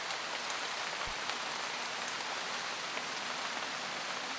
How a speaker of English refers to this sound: Listen to the sound of the rain. Allow the peaceful feeling to wash over you.